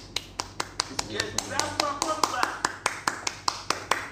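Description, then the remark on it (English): Hands clap in a steady, brisk rhythm, roughly five sharp claps a second, crisp, while people talk and murmur underneath. “Come on, clap before we close the episode.”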